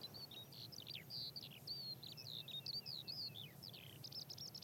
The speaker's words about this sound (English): Lark. Can you hear the lark?